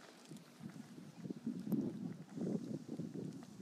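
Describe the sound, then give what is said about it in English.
Gusty wind buffets a microphone outdoors, producing a continuous low rumbling roar that swells and fades in uneven bursts, with no voices. “It's a bit windy.”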